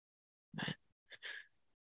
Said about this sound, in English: Okay, breathing through the muscles of your throat, right? It's coming in and out through your nose, but the sound isn't coming from there. The sound is coming from the throat.